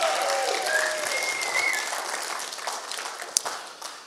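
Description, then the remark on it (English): An audience applauds steadily, another round of applause for the person who gave the announcements: a dense wash of many hands clapping at an even level, with a few whistles rising above the clapping and a sharper clap standing out near the end. “So can we give DJ another round of applause, please?”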